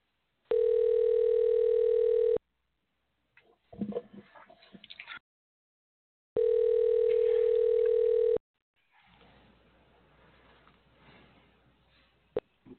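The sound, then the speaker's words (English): A steady telephone tone sounds twice for about two seconds each, separated by bursts of quick clicking and rustling, then a low hiss like an open phone line with a sharp click near the end, as a phone call is placed for an interview. “calling for our interview.”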